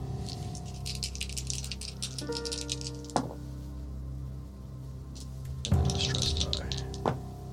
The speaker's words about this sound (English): So many damn dice. One success so far.